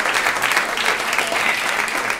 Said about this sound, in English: Let's put a little round of applause for her.